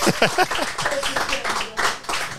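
A round of applause: dense, steady clapping from a group lasting the whole moment, with a few voices calling out over it at the start.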